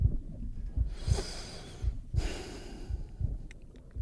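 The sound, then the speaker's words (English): Two long, loud breaths drawn through the nose, each a broad airy rush lasting under a second, with soft low thumps pulsing steadily underneath. “I can't even like breathe through my nose because it's so loud.”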